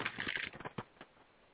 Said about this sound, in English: Okay, so as I'm shuffling, one card decided that it did not want to be part of the shuffle, so I'm going to take that as an indication that it's relevant.